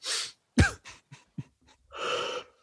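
A close, drawn-out yawn: a breathy inhale, then a loud groaning vocal sweep that slides downward, a few small mouth sounds, and a long airy exhale at the end.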